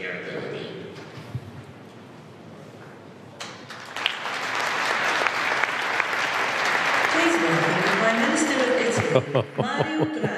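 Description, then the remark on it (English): A crowd breaks into loud, sustained applause that swells after a few seconds, with a murmur of voices beneath and a few sharper claps and shouts near the end. “Pretty soon it'll be his turn to clap.”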